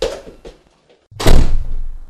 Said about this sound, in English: I've locked the doors.